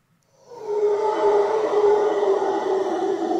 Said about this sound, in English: We didn't see a single howler monkey, but we heard them, and they sound absolutely horrifying. This is what we heard pretty much all day, every day. Just give you a little piece of it. This is the howler monkey.